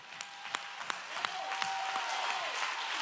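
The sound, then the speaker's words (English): A church audience in Spokane claps their hands, with sharp individual claps standing out above a steady bed of mixed applause. A faint sustained tone hums underneath partway through. “but when I clap my hands, I'm thrusting a weapon into every spirit of depression, into every spirit that's trying to stop the church.”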